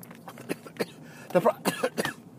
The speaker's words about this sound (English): One second while I cough.